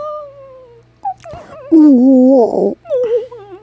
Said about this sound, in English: You need to have a whale sound. Have you ever heard those like whale, the soothing whale sounds?